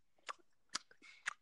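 Wet, sharp mouth smacks from someone chewing gum loudly, three distinct chomps spaced about half a second apart with softer squelching between them.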